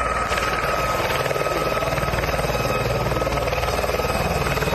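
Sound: helicopter landing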